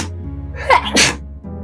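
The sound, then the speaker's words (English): A loud sneeze bursts out after a short breathy build-up, a sharp explosive burst with a quick follow-through before settling back to a low background hum. “The first sneeze attack of 2023.”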